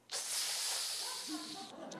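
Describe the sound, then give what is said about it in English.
A person sharply sucks air in through their teeth, imitating how Japanese people react instead of saying no, making one long, steady hiss that lasts over a second before cutting off, with a faint voiced tone near the end. “It's like, oh, I heard the sucking of air.”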